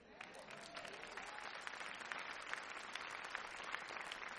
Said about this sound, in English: Did y'all know you hadn't clapped for about 15 minutes? But when I told you the story, I didn't even know you were going to clap at that part